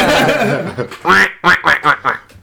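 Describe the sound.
A person imitates a duck close to the microphone, letting out a string of about five loud, nasal quacks in quick succession after a brief breathy noise.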